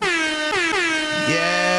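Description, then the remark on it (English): A loud, blaring air horn sound effect plays continuously, its brassy tone dipping and sliding in pitch a few times before settling lower near the end. No one talks over it. “Do the horns.”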